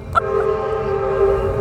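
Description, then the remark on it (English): An Amtrak passenger train's horn blares in a loud, sustained chord over the low rumble of the train rolling past, with no voices. “There's a train going by right now.”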